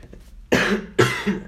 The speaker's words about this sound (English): Excuse me, I had a bit of a cough.